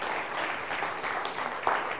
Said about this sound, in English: Yeah, we should give them a clap. Well done.